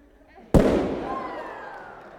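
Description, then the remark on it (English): A single sharp, loud balloon pop bursts out of near-silence, followed by a fading rustle and hiss as confetti scatters, with a faint whistling tone trailing off. “It popped into confetti.”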